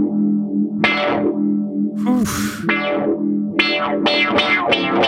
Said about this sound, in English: The other one I have chosen is an envelope filter. Oh. I'm gonna turn that on. Give me the envelope filter and the phaser.